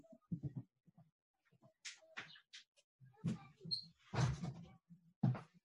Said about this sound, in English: I'm sorry, I'm just going to shut the door.